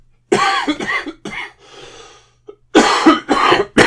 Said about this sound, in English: Love this cough. I love it.